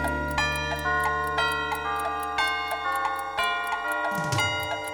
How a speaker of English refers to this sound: The mouse ran up the clock. The clock struck five.